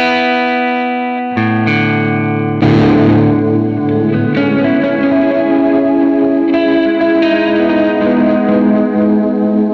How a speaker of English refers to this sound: The egg has a delay, modulated darkened delay. It has a compressor, and it has a reverb. So it's a really cool thing. I bought it because it looked cool, and it sounds cool too.